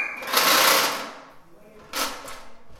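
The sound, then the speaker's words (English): Mismatched chairs scrape across the floor in two harsh, rasping bursts as they are moved into position for a meeting: a long, loud drag first, then a shorter one after a brief lull. “An assortment of mismatched chairs make a terrible scraping as they're moved into position for a meeting.”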